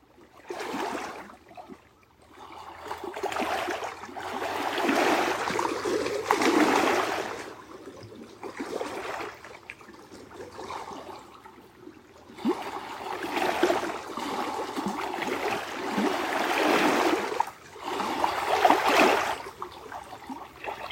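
Gentle lake waves lap in soft, rhythmic swells, each wash of water rising and falling every few seconds, with no voices present.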